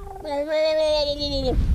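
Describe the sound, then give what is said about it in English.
A voice imitates a frightened fat cat gurgling: one drawn-out, wavering yowl lasting over a second, fairly loud, ending with a short breathy rasp. “your fat cat, Captain, who seems very scared at the moment and is gurgling at you guys”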